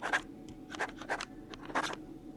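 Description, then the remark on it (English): A pen scratches across the paper of an old, yellowing guest book in quick, uneven strokes, like someone signing a name to check into a mountainside cabin. It is fairly quiet, with short pauses between bursts of writing. No one speaks. “Mind signing in this book right here?”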